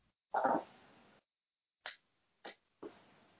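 A small dog lets out one longer, rough bark, then three short, sharp yaps spaced about half a second apart, with no one talking.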